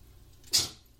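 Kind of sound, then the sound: human body sound, sneeze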